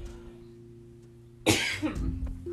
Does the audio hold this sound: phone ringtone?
no